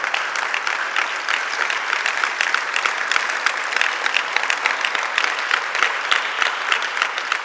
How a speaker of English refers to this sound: We want to give God a wonderful round of applause.